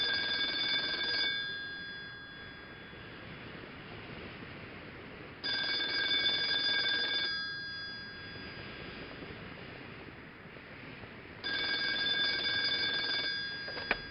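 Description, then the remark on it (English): A telephone rings in three bright, buzzy bursts about five seconds apart, with a steady low hiss filling the quiet gaps between rings; no one speaks. “Phone rings.”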